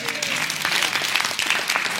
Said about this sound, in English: If I were you, I would be clapping for Jesus.